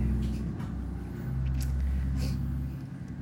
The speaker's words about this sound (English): Ooh, that's a loud truck.